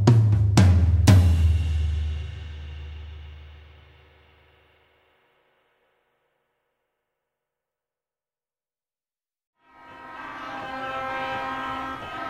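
Demonstrators in Niger, camped outside a French military base, blow horns and whistles: loud horns blast at the start with a few sharp bursts, then ring out and fade into silence before a dense chorus of horns and whistles returns, sustained and overlapping.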